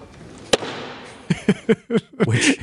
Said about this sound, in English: Congressman Patrick McHenry, now the Speaker pro tem, ending the session with an emphatic gavel bang.